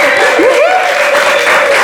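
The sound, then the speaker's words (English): A crowd applauds a mother and an aunt as they come in, a dense, steady wash of clapping, while a sustained whistle-like tone, briefly swooping upward, rides over the top. No one speaks. “Going around and applause for my mum and my auntie coming in.”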